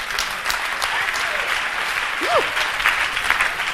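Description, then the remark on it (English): A crowd claps steadily throughout, a dense, continuous wash of applause at moderate loudness, with a faint voice briefly rising above it partway through. “All the righteous ones are clapping.”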